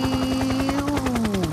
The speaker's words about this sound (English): Helicopter!